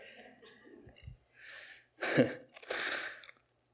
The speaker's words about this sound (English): Bless you.